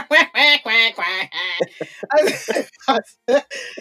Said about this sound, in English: They got a pond with ducks that laugh at me. It's been great. What the hell? I swear them ducks over there talking about me.